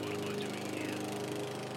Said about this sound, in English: As a young kid, I used to say to my mother, we've just mowed the lawn, why is he mowing the lawn again?